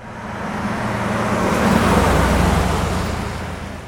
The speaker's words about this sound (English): This bass layer is the car pass by that I made to layer under all these and sort of give them consistency.